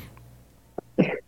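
A short, sharp cough burst followed by a louder, harsher cough with a raspy throat-clearing quality, over a quiet low hum.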